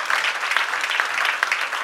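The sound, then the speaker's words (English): An audience claps their hands to bless the Lord, a dense, steady wash of many overlapping claps at even loudness with no pauses, filling the whole moment without any voices on top. “Can you clap your hands and bless the Lord?”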